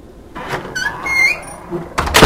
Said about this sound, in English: Please come in. That will allow me to close the door.